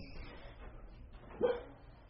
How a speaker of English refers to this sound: Now we got a barking dog in here.